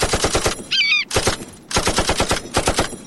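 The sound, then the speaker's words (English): Rapid bursts of sharp, loud gunshots are fired at an eagle in quick succession, pausing briefly between volleys, with a short high warbling cry cutting in after the first burst. “Okay, I'm going to shoot the eagle. I've got my gun out.”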